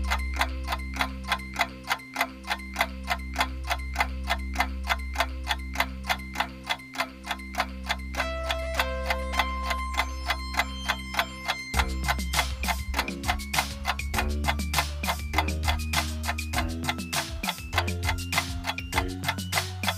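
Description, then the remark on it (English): A steady, fast ticking like a 30-second countdown timer for answering a quiz about Mount Everest runs over a low, pulsing musical bed, with the music growing busier and more urgent partway through. No one speaks. “We're going to give you 30 seconds to think about your answers to the Everest quiz. The clock starts now.”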